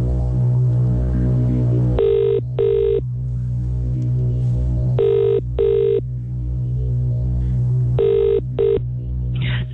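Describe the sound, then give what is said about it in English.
A phone line's ringback tone on an outgoing call purrs in three evenly spaced double rings, each a pair of short buzzy pulses, over a steady low hum with no one speaking. “We're going to dial the number, answer the phone, say hello”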